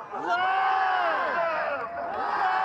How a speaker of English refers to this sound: As we approached the Coquitlam Public Library, some of the protesters could be heard yelling hateful things.